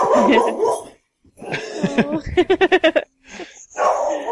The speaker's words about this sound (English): Sorry about that. It appears that my dogs want to be on this podcast too. Give me a second and we'll be right back.